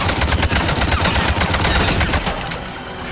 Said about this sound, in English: One, two. Cause a warp explosion. Shoot a bunch more bullets. And down. There we go.